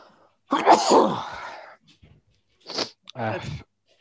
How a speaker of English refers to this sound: Yeah, I'm gonna have to sneeze.